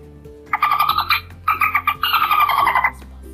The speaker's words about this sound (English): Dolphin. Here's a dolphin sound.